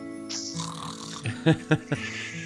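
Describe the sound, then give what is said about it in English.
A person imitates snoring with a few rough, rhythmic snorts, quickening into short bursts near the end over a low steady hum. “I always like to add the snoring.”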